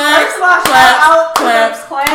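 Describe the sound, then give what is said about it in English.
Three sharp hand claps included in a music video land at an even, unhurried pace over a sustained, melodic tone that sounds like singing or music running underneath. “Claps.”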